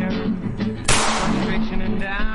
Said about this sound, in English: I think the gunshots are a nice touch.